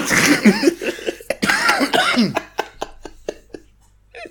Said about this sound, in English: I would try to do it right now, but I'll know I'll end up just coughing my lungs up, so I'm not going to. That's right, and that's why you'll hear this edited clip now.